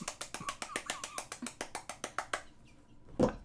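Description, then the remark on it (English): A rapid, steady run of about sixteen sharp fingernail taps on the hard surface of a phone with no case, fairly loud, mimicking a woodpecker's pecking, then a pause and a single duller knock. “You just hit your phone, which doesn't have a case on it.”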